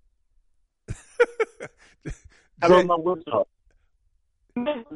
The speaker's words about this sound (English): Well, hey, man, you got an Obama phone, man. Get off that. Got an Obama phone. You are constantly breaking up